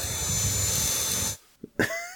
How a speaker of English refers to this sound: I've got my vacuum here. So now we can be like...